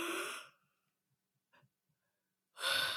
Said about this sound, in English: But anyway, back to yawning. So I'm about to yawn right now just because I said yawning.